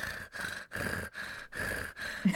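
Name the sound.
imitated heavy breathing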